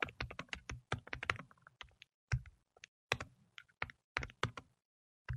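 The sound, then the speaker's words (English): Rapid typing on a computer keyboard, a burst of quick clicky keystrokes with short pauses between clusters, then a few final taps trailing off. “All that typing for yes?”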